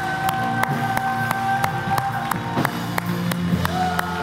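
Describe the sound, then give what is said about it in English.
A crowd claps in a steady, rhythmic beat while voices cheer and whoop over a lively, continuous background of group noise. “We will hiss the enemy away by the clapping of our hands.”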